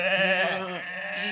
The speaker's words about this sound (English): You hear the faint bleating of sheep from the enclosure.